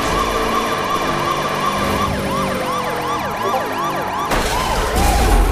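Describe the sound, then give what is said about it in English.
A police car siren in a racing video game wails in rapid rising and falling sweeps, loud, over a steady engine roar, with a sudden burst of louder noise near the end. “Move over, cars. Move over. It's the police.”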